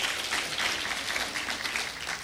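Steady applause from a crowd fills the space, a dense wash of many hands clapping at once, sustained at an even level for a couple of seconds without any talking.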